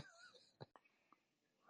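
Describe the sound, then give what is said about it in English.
Faint, raspy breathing with a slight wheeze, punctuated by a couple of short, soft breathy bursts, quiet over a low hiss with no talking, picked up by an open microphone. “I feel like I hear a hot mic. If someone can help me out. I keep hearing like breathing or something.”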